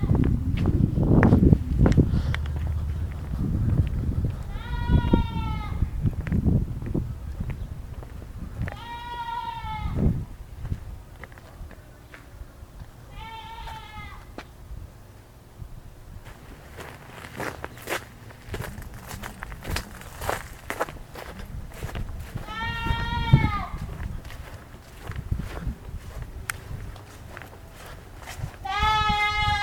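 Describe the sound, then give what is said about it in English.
A goat bleats four times at uneven intervals, each a wavering, nasal cry, over a background of rustling and shuffling footsteps, with low murmuring in places. “They have a goat back there.”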